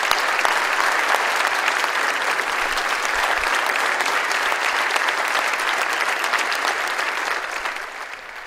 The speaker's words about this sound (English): Second thing is, I do think we're going to, one more time, give this guy a round of applause. 52 years serving our communications ministry.